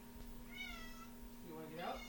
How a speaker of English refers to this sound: Was that like, I heard like a meow. So. Yeah, let me check on her now too, real quick. Oh, I hope she didn't get scared.